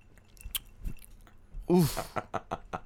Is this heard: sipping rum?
yes